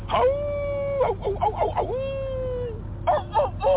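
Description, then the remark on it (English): A person's voice imitates a rooster crowing, with long drawn-out crows broken by choppy, clucking bursts, fairly loud over a steady low background hum. “That's a rooster.”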